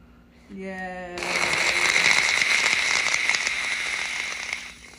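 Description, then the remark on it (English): A brief tonal note gives way to a dense crowd applause sound effect, many hands clapping in a steady, loud crackling wash for about three seconds before cutting off. “Another clap. How are people clapping?”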